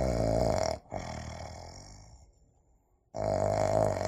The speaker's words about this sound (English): The little pig eats the big watermelon in one bite. But he still ignores me. Oink, oink!